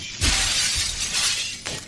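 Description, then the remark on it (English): A loud crash of glass shattering, a bright burst of breaking shards that sprays and tinkles for over a second, with a second smaller crunch near the end. No voices. “The devil breaks glass like a man.”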